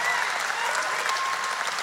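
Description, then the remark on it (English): A large crowd at a sermon claps steadily, a dense, continuous wash of applause that stays loud and even throughout without any break or voices rising above it. “Now, don't take that off the clock, because that was a long applause.”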